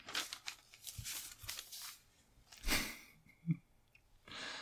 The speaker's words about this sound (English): Shuffle, shuffle.